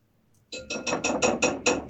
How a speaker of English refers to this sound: Who's pounding? I think there are some dishes being done in the household